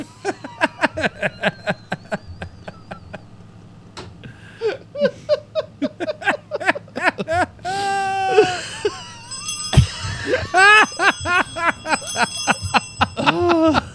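Quick, bright bell rings repeat in rapid bursts, loud and close, tangled with high giggling, squealing voices that rise and fall throughout.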